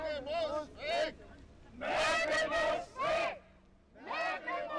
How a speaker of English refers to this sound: Now they're yelling, Merkel muss weg, Merkel must go. Not only because she's part of a system they think is corrupt, but also because of her decision to let in refugees.